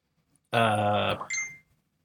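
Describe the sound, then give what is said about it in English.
A phone alert from an iPhone 14 sounds on its own: a loud, bright, buzzy tone held for under a second, followed by a shorter, higher-pitched chime that quickly fades. “I'm going to mute my phone.”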